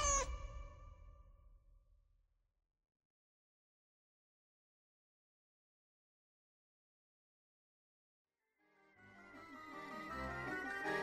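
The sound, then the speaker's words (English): A black cat named Wilbur meows loudly, the call fading out, then after several seconds of silence a second drawn-out, wavering meow rises at the end. “Now, my black cat Wilbur likes a few mice in the mix.”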